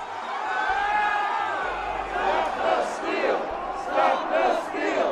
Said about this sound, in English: This was an enormous, like, 10,000-person crowd, and they were storming the Capitol.